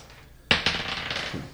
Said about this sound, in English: Right, so let's roll your initiative. All right, I'm using my stuff dice.